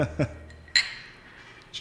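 A bright glassy clink of glasses in a toast rings out and decays, followed later by a fainter one, with a couple of short low thumps beforehand, fairly quiet.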